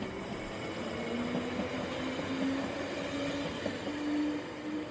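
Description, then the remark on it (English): A steady, loud rumble of a Hammersmith and City Line underground train heading west to Baker Street, with a low droning hum that rises and falls slightly over a constant roar of wheels and carriage noise. “she took a Hammersmith and City Line train 9 stops west to Baker Street.”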